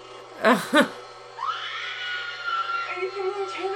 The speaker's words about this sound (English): Help me! Help me! Are you screaming? Help me!